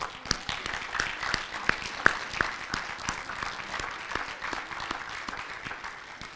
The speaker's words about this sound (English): Would you just stand for a moment? We want to recognize you and we'll just give you an applause.